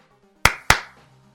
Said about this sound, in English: And oh, can I get a clap?